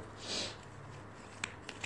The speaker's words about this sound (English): I'm shuffling the cards.